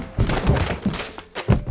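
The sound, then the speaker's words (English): Someone walks into a closet door, knocking down suitcases: a dull, heavy thunk followed by a few softer knocks and rattles as the door shakes, ending with one more solid thump. “Remind me to watch where I'm walking next time so I don't run into your closet door.”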